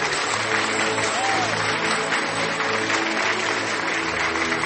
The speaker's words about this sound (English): So, wherever you are, I want you to help me as I welcome one of my fathers, even among the fathers, in the name of Jesus, with a clapping and a tonguing ovation. Do that for me.